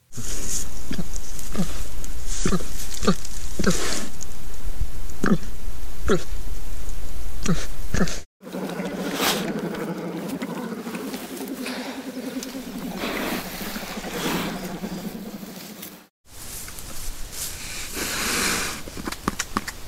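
Black bear vocalizations: a run of sharp, rhythmic huffing puffs, then a low, steady rumbling moan, ending in rough breathy noise. No talking.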